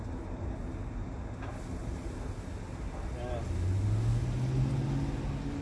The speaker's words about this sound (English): I don't think anybody could hear you over the roar of the airplane.